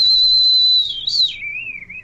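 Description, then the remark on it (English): A whistle fitted on a model jet, used by the pilot as an airspeed indicator, shrieks in flight, a loud, steady high tone that briefly bends, then drops to a lower pitch and wavers as the plane passes. No one speaks. “And a lot of folks say, why you put whistles in there? That's my airspeed indicator.”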